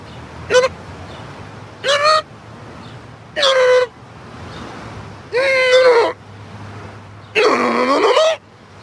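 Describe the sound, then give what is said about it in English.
Car horns honk in five loud bursts that grow longer each time, their pitch bending like speech inflections over a low background rumble, as if the cars were talking, in a commercial from France. “Even though this commercial I'm about to show you is from France, cars that talk in France, you can understand them over here as well.”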